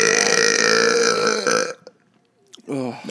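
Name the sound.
loud burp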